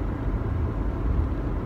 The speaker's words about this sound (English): Shutting off the world a little bit, especially in the car sometimes. But I am driving away from this event tonight.